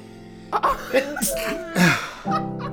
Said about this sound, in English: Do you know how hard it is for me to sneeze? You cannot speak to me while I'm sneezing because I lose my sneeze.